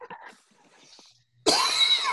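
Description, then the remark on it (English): A loud, harsh, rasping cough bursts in after a stretch of faint, scattered noises, and the hacking sound continues strained and sustained until the end. “has been coughing up a hairball since we started this show, and he believes that he has COVID-19 and that he is slowly dying”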